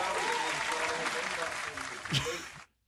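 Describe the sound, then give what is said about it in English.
An audience claps steadily for a couple of seconds, a dense rattling wash of hands with voices mixed in and a brief whoop near the end before it cuts off abruptly. “Clap it up.”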